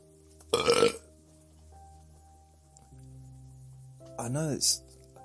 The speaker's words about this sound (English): Oh, I just did a big burp.